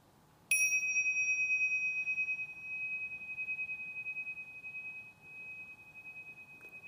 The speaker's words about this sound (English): the class was invited to listen to the sound of a gong. And you've been, you know the sounds of the gongs. This could be like, here's one of my favorite ones. Listen to something like this.